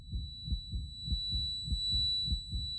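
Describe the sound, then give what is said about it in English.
A man's rapid, pounding heartbeat as he listens intently in a silent cubicle: deep, muffled thumps in a steady, quick rhythm, about eight beats in three seconds, with a thin, constant high-pitched ringing tone above it. “Eric's heart pounds as he listens intently.”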